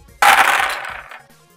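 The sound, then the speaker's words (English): Twelve dice tumble out together in a sudden, loud clatter of rapid overlapping clicks that rattles for about a second before thinning out and settling. “So Cord is rolling 12 die. 12 dice.”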